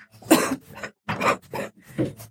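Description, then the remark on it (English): Several harsh coughs come in quick bursts, four or so separated by brief pauses, loud and raspy with a throat-clearing quality and no talking. “Save the coughing for the end.”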